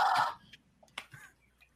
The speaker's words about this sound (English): that's the Mayan death whistle. Oh, that's so cool.